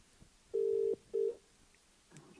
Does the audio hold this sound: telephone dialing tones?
yes